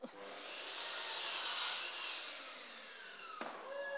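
A power tool runs continuously with a harsh, high-pitched whirring hiss that swells louder through the middle, then eases off, with a brief shift in pitch near the end.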